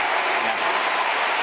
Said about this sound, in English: And they don't stop. Listen, we'll let it run. They stand up. They're standing up. So obvious propaganda by C-SPAN on the C-SPAN feed. They're not stopping clapping. They're standing up.